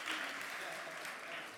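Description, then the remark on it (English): An audience applauds at the mention of Juneteenth, a dense, steady wash of many hands clapping that stays fairly loud and even throughout the short stretch. “If you don't know what Juneteenth is, yeah, clap, because I can't.”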